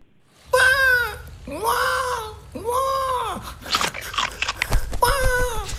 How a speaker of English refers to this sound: Chewing there. Man, very hungry there. So hungry. Very hungry.